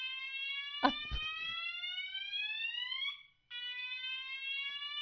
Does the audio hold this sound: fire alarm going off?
yes